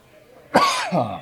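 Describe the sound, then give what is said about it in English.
A single harsh cough bursts out, followed by a brief raspy second heave as it trails off, with no talking around it. “I'm coughing a lot today.”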